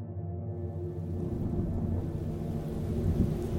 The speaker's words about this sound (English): You guys step out into the storm and start to make your way on the old familiar path to the fire tower. The wind is howling. The rain is pelting. As you go, you struggle to kind of stay together and stay upright. The storm is only worse.